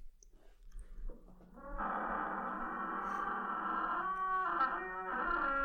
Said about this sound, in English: A screaming door. It's the longest door sound I ever thought they could do.